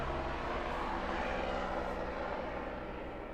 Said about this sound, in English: Is that a helicopter? Yeah, dude, nonstop.